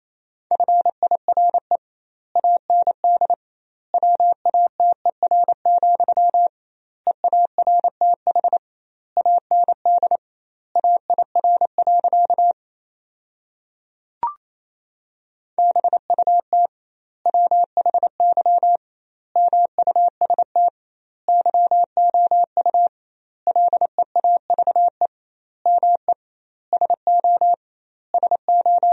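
Morse code sent at a brisk 28 words per minute, practice sentences from the top 400 words with double word spacing: a steady mid-pitched tone keyed in rapid dots and dashes, grouped into words with short gaps, broken once midway by a brief pause and click.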